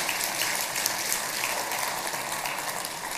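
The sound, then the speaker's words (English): An audience claps to God during a Good Friday sermon, a dense wash of many overlapping hand claps at an even, fairly loud level with no voices, sustained for a few seconds. “How about a clap to our Father in heaven?”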